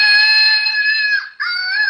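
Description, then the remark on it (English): A flying monkey toy lets out a loud, sustained high-pitched screech with steady harmonic tones, broken by a brief gap before the shrill wail resumes. No one speaks. “All right, there's the monkey.”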